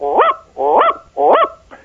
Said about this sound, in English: When you have ravens, it's a much deeper throated.